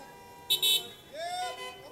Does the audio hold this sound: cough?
no